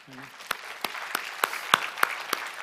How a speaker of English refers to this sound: That's 1,000 families that will get to hear Jesus. I think that deserves a huge clap.